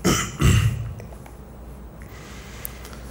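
A short throat clearing by a young man: two quick rough bursts in the first second, then quiet with faint background hiss and no talking.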